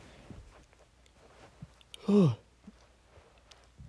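A single short, breathy vocal burst, a yawn that breaks into a low burp, with a falling pitch, standing out loudly against an otherwise quiet background with a few faint clicks.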